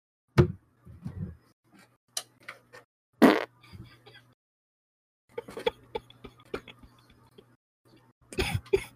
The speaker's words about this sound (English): I got a fart, not gonna lie. Should I fart into the mic? Bet you won't.